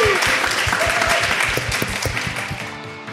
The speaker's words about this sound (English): Give the panellists an incredible round of applause. They were incredible.